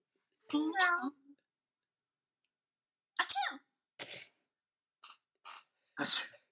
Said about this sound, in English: have now done their final sneezes as they passed out in the corner, covered in cats and dogs and EMTs and fire.